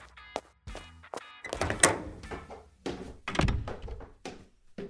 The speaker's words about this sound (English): What happened to the shelf? A fly. A fly knocked the shelf down? A really strong fly.